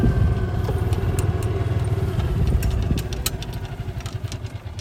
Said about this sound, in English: I'm going to say, the big difference, though, is the rumble of the tractor underneath your feet.